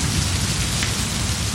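A heavy monsoon downpour roars steadily, a dense unbroken hiss of rain with a low rumbling undertone of thunder beneath it. No voices are heard.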